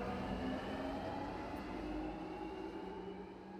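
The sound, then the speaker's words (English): Steady low rumble inside a train carriage held at a red signal, with a constant hum and faint tonal whine from the rails, continuous with no talking. “This train has been held at the red signal.”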